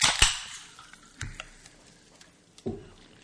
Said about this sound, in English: Well, I guess, as always, we're going to start this podcast by opening a can of water.